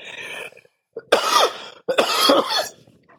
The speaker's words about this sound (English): Hopefully, by the time that happens, I will be in a healthier place where I am not struggling with containing this cough and breathing.